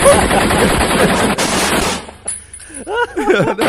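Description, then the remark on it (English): Loud, rapid machine-gun bursts rattle continuously for about two seconds, then cut off as a person starts talking. “Then we go with the gunfire and encourage people to do the belt buckle crawl.”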